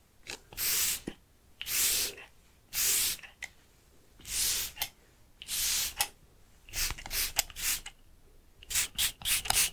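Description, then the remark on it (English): A floral spritzer spray bottle mists very lightly over a person's face in a series of soft hissing spritzes, evenly spaced at first and then coming in quicker, shorter bursts, with no talking. “So if you'd just like to gently close your eyes, I'll grab the bottle and just begin spraying very lightly over your face, okay?”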